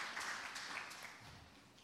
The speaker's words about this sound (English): You guys can probably sit down. Give them a clap. Thank you.